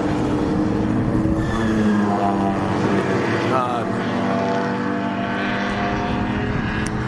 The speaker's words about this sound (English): It looks like they got Camaros, Corvette. That is a Corvette. Big beast of a Corvette. And this is just sort of coming out of the, where they just get onto the track. And it's the first corner. It's a wide, it's a big track. More Porsche in the rear.